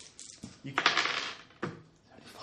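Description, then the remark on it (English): Dice clatter and tumble across a hard tabletop in a couple of quick, rattling bursts, fairly loud, with a brief pause between rolls, as players roll for perception in a tabletop role-playing game. “Why are you using those dice?”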